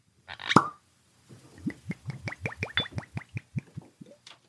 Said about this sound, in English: Do you have a bottle of it there? I sure do. Shall we open up? Absolutely. the cork pops very satisfyingly in like this old school way.